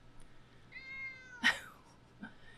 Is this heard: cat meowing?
yes